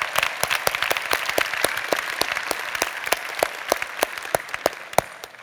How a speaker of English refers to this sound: Let's give a crazy round of applause for all the mature people. Yeah.